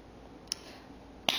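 One person claps twice, two sharp, crisp smacks spaced under a second apart, the second noticeably louder, over a quiet background with no talking.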